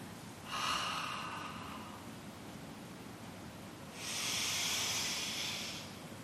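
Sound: deep yoga breathing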